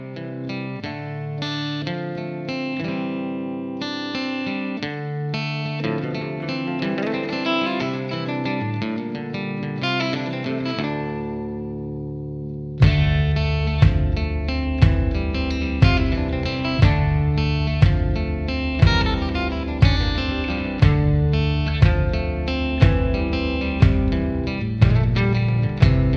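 An 80s British heavy metal song opens with layered, distorted guitar chords that ring out and sustain, then drums kick in halfway with a steady, pounding beat under the full band.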